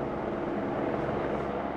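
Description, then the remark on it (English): A steady, droning rumble of helicopters circling overhead in Monterey Park on a Sunday after a mass shooting at a dance studio, a dense low whir that holds constant and fairly loud throughout, with no voices. “Locals woke Sunday to the sight of police barricades and helicopters circling above.”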